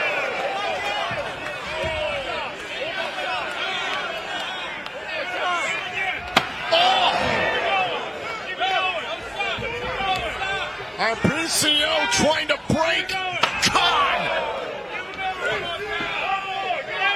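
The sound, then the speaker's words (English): Repeated chair shots from PCO striking the small of Khan's back in a TNA wrestling match land as loud, sharp cracks: one isolated hit, then a quick cluster of blows, heard over constant excited commentary and a murmuring crowd. “Relentless chair shots, payback for the assault earlier.”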